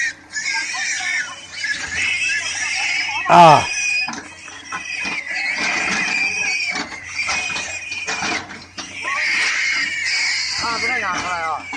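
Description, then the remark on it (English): A dense chorus of pigs squealing and screaming as they are pushed into a hole dug by a backhoe and buried alive by the thousands, high-pitched and continuous, with many animals crying over one another and one especially loud shriek rising near the start. “And you can hear all of that screaming, of course, as well.”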